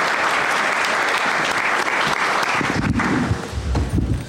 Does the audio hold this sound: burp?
no